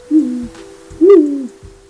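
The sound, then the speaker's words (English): A great gray owl calls with two deep, soft hoots, the second longer and slightly stronger, clear against a quiet background. “That's the call of a great gray owl, one of about a dozen owl species at home in California.”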